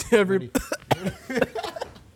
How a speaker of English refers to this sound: Bro, when I say I coughed and I felt it in my nose, bro.